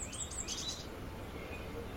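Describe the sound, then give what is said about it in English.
A quick burst of high, thin bird chirps and short song notes repeats for under a second, then gives way to a soft outdoor hush with faint calls. “I think it's been interesting to hear the variety of sounds that the birds make.”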